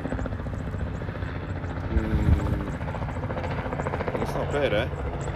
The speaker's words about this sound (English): People flying helicopters in the background.